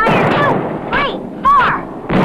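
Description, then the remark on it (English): Rockets firing on Ideal's electronic fighter jet toy: a loud run of four harsh electronic blasts, each a noisy burst with a whistling tone that sweeps downward, coming in quick uneven succession. “You control six moving targets, fire four rocket guns.”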